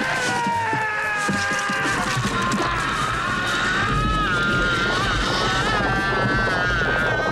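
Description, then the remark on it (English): A man's sustained, wavering movie scream, high and strained, rising and falling over a thick layer of rumbling, chaotic noise that continues loudly throughout. It comes from the Jurassic Park scene in which Gennaro the lawyer is eaten by the T-Rex. “I'm no expert, but it sounds like someone's being eaten.”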